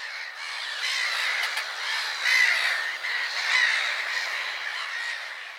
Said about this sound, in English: Oh, it came by seagull. I love it when Posty Dale uses us for his seagull deliveries.